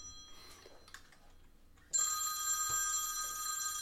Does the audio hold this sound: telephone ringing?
yes